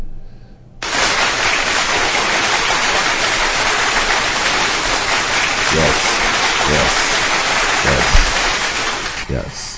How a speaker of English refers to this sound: Can we drop a clap for those players, please?